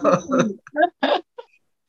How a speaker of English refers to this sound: Yeah, she was just coughing. She's waking up from her nap, like, and she always has that little cough and stuff. She's like an old lady. She's got to clear her throat, make sure everything's good, rub the floor.